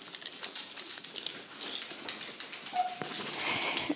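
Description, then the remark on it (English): Puppies in a crate whimper and whine in short, thin bursts, wanting to be let out, with scattered scuffling and clicking noises mixed in; no one speaks. “Hi, puppies. Hi. Okay, I'll let you out.”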